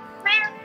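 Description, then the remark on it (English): A single short meow from a cat named Lou, fairly loud, with a bright, tonal cry lasting under a quarter second before quiet returns. “We also got here with us, we got Lou the Kitty.”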